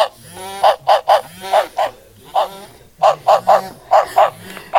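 A cartoonish dog barking sound effect played from a sound button in a den, loud, with quick clusters of short, honky, squeaky barks repeating in bursts across the whole stretch.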